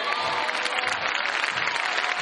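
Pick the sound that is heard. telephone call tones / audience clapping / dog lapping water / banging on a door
audience clapping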